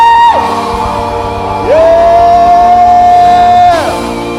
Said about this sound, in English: Come on, lift your voice and clap your hands and give the Lord a shout of praise this morning. Let the heavens hear your voice. Scream!